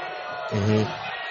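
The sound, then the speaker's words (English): A large stadium crowd at a Pittsburgh Steelers football game lets out a low, sustained boo over a penalty flag, swelling loudly for about half a second before easing back into a steady roar of crowd noise. “Are they booing? Yeah. Because they got it one flag.”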